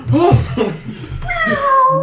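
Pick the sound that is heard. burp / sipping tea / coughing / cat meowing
cat meowing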